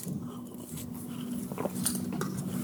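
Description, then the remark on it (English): Someone having a glass of water: soft clinks and small handling noises of the glass, with a few brief sipping sounds, over a steady low hum and no talking. “Okay, I'm just going to have a glass of water.”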